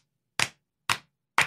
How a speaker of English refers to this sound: Do 5 claps? Let's do it.